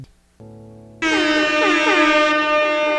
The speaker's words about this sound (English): All right, you want a horn? Yes. The sick goose.